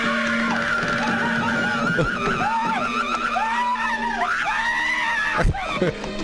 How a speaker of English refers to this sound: They're running out of the house screaming.